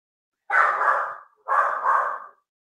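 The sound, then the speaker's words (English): A dog named Zara, reacting to the doorbell, lets out two loud, drawn-out barks in quick succession, each lasting nearly a second, with a harsh mid-pitched tone and silence before and after. “She hears the doorbell. She goes nuts.”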